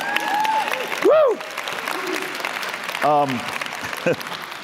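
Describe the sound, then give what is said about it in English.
A church audience claps steadily in a dense, continuous wash of applause, with a few raised voices whooping and calling out above the clapping, as a preacher calls on them to clap their hands and shout unto God. “And we need to clap. Or clap your hands, all you people.”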